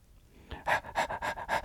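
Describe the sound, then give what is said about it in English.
A dog named Carrot pants quickly and rhythmically while getting his teeth brushed, about five breathy huffs in a row, fairly loud, with no talking. “Carrot panted.”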